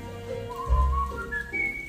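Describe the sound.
A person whistles a short birdlike melody, held clear notes stepping upward to a high, bright pitch, with low thumping sounds underneath and no talking.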